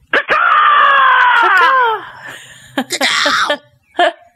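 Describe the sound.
A person lets out a loud, drawn-out squealing scream imitating a hog, its pitch sliding downward, followed by a few shorter harsh squeals and grunts, for the Hog Screams show.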